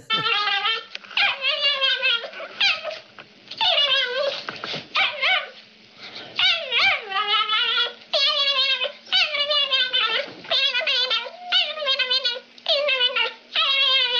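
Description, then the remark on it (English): Small dogs yap and whine in a rapid, nearly continuous string of high-pitched cries, loud throughout, with a faint steady hum underneath and no one talking. “Oh, so be quiet so I can play those yapping dog sound clips.”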